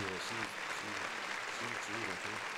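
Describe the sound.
Steady, dense applause fills the whole stretch, a crowd clapping continuously at a fairly even level, with faint voices murmuring underneath.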